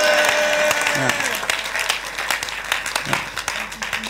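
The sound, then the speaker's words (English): An audience claps their hands in a dense burst of applause after a prayer, many overlapping claps forming a steady roar that thins into scattered claps, with voices calling out underneath. “Clap your hands and shout a big amen.”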